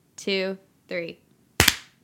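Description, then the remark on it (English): Two short voiced sounds, then a loud, sharp burst of hand claps as two people clap together on a count of three to sync, two claps landing almost together as one slightly doubled smack that rings out briefly. “I think you clapped after I did.”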